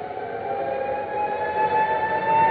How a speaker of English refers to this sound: This is Trafalgar Square. The noise that you hear at the moment is the sound of the air raid sirens. I'm standing here just on the steps of St. Martin's in the Fields. I'll just let you listen to the traffic and the sound of the siren for a moment.